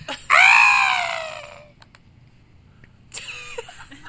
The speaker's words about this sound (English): Sorry, the computer just did something weird there. That was the cause of the scream.